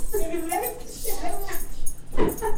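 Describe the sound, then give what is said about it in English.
A dog whimpers in a series of high, wavering whines, then lets out a sharper, louder yip near the end. “Hi, dog.”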